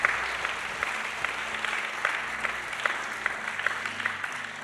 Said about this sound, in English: If you're a teacher, raise your hand. Oh, my God. Please keep it raised high. I need to see. Oh, my God. I want everybody in this building to put your hands together and clap your hands for those.